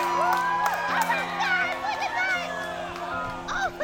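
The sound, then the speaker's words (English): A crowd on a volcanic butte cheers and shouts excitedly during the totality of a solar eclipse, with many overlapping voices, whoops and high-pitched yells rising and falling continuously, loud throughout, under a steady low hum. “People are freaking out, as I'm sure you can hear behind me.”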